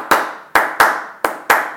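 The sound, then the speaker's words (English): Five crisp hand claps in an uneven rhythm, each ringing briefly, fairly loud with no voices. “Anil claps.”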